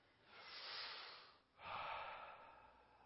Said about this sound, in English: I want you to relax. We all had a hard week and go on strong. I just want you to, don't go to sleep, but just relax. Just kind of lean back. Close your eyes. You know, try some deep breathing.